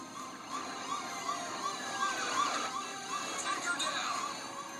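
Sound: police car siren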